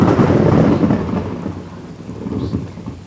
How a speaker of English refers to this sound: There was a huge rainstorm that hit. And there was a lightning bolt that came between my car and the screen.